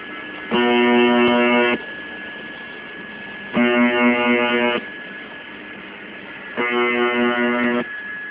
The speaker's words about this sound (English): But call sign UVB76 has out-creeped them all by playing the same jolting tone from Russia since 1982.